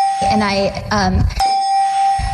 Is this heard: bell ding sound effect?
yes